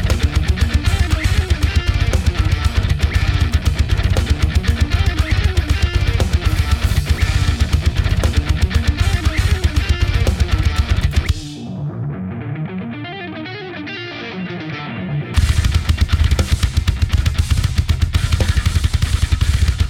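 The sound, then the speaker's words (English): Loud, dense electronic music with heavy thumping bass and a bright line riding on top; midway the highs drop out in a muffled, filtered break before the full mix slams back in. “Like, it's just this nice little tickle over, like, the really heavy thumping that's going on.”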